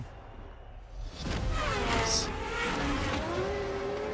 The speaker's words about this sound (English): these are different kind of race cars from the Gran Turismo game